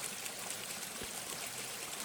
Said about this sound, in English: The ripple of the water as it flowed over the little stones.